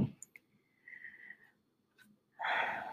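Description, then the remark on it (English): A slow, slightly whistling breath drawn in, a brief pause, then a louder, rushing exhale, as deep breathing of four counts in and four counts out. No one speaks. “That's something you guys can do all the time, is the 4 in and 4 out. Breathing, deep breathing really helps our nervous system and it's very simple, and it resets our nervous system.”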